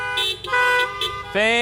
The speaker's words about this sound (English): So if you're there, honk your horn for me.